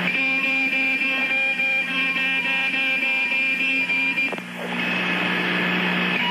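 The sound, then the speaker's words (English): A loud, sustained electronic warning tone from the Skylab space station's warning system drones steadily for about four seconds over a background hum, then gives way to a broad, rushing mechanical noise. “Or if we have another warning tone, we have another sound.”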